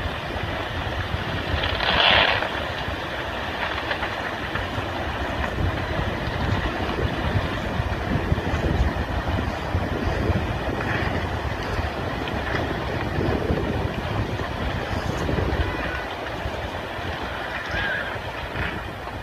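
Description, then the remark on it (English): A loud, steady roar of surging seawater rushes and churns as houses are swept along and swallowed by the sea, with a brief crashing burst early on and a few heavier surges later, continuous throughout with no voices. “As I saw those houses being swept along and swallowed by the sea, all I could think was, these are people's homes.”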